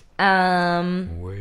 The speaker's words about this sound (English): That cat is angry at you.